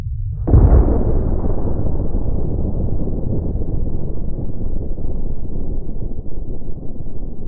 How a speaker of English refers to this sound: The sound of the largest explosion on record could be heard over 1,600 miles away. The force of the blast took over 5,000 feet off the mountain's peak, sending a column of debris almost 30 miles into the atmosphere.